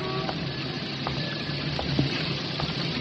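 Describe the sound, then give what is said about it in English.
Steady afternoon rain pours down on old brownstone houses in Lower Manhattan, with water streaming and gushing from drain pipes and gutters and spattering off awnings, a constant wash of noise broken by occasional spattering drips. No one speaks. “It was raining that afternoon.”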